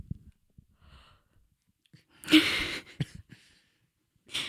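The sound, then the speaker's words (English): A long, breathy yawn swells up loudly with a low voiced groan inside it, then trails off into a few softer exhales and small clicks. “Did that yawn start on the word okay?”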